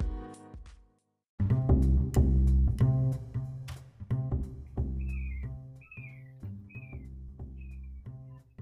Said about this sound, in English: Was that a seagull? It sounds, I don't know what kind of bird it was. Bro, that sounded like I was on the beach about to be attacked with a prize in my hand that I don't even have.